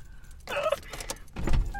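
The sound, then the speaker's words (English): Keys jingle and rattle in a couple of short metallic bursts, with faint car-interior rumble underneath and no one speaking. “Oh, where are your keys? Right here.”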